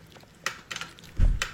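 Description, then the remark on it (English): Roseanne Barr, recording herself on her cell phone, crunches a hard lozenge between her teeth, giving a few sharp, crackly bites spaced irregularly, with a dull thump partway through and no talking. “This is her chewing on a lozenge.”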